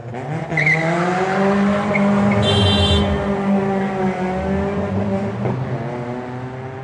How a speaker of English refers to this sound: Equally, the traffic on Pierce Road knows that if you want to show off, this is the place to do it. As you pass the line of cars in Bebop's car park, this is where you rev or wheel spin.